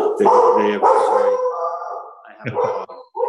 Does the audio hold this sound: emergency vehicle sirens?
no